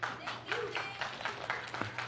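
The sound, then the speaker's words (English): A small audience claps after a volunteer reads two verses aloud, a steady patter of overlapping hand claps, moderately quiet, with a low hum underneath. “But everyone else just clapped, so.”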